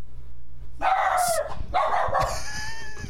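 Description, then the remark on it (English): A dog named Beacon barks twice in quick succession, fairly loud, each bark a harsh, drawn-out burst, followed by a faint lingering tone and low background hum. “Fuck, that dog hates my idea.”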